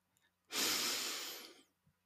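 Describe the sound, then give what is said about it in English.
One long, deep breath, with a steady airy rush that swells quickly and fades out over about a second. No talking around it. “And we can do that by taking a few deep breaths.”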